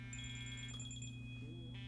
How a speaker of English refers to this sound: what is that? You have a phone call. I do have a phone call.